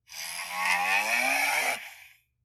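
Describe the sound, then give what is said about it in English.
A single long, loud cow moo lasts about two seconds, a rich, buzzing low call whose pitch slides slightly upward before cutting off. No one speaks. “First one is cows mooing.”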